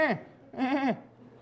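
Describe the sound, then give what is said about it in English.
A human voice imitates a sheep raising its head, giving two nasal, wavering bleats, a short clipped one followed by a longer quavering one, with a brief pause between. “That's my impersonation of a sheep raising his head.”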